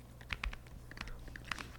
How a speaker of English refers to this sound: Aggressive typing.